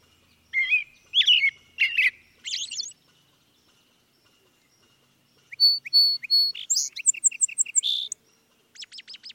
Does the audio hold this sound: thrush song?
yes